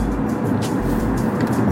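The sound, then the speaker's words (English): Steady low engine and road rumble from inside a moving car that has just got out of traffic, a constant droning hum at even loudness with no voices, like cruising along at a smooth pace. “But, finally got out of that traffic, thank God. Got some movement going here.”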